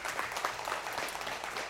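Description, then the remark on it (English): An audience applauds, a dense, steady patter of many hands clapping at once with no voices over it, holding an even level for the whole short stretch. “Yeah, you can clap.”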